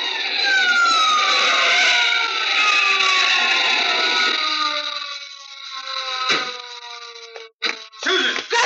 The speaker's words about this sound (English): Oh, I thought we'd both go through it when I slammed on those brakes.